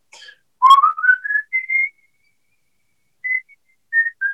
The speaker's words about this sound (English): So my father used to whistle. Because the man who swept the halls, the custodian at our grammar school, used to whistle. And I took up whistling at a young age.